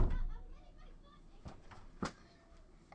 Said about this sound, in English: And quit kicking at my door.